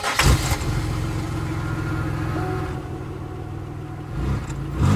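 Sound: car engine starting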